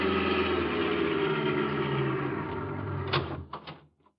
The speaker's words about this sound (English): We jumped into a car and drove over there.